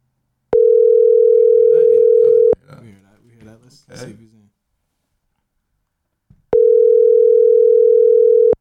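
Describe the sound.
Loud, steady ringback tones of an outgoing phone call sound twice, each about two seconds long, with a brief stretch of someone talking and then silence in the gap between them.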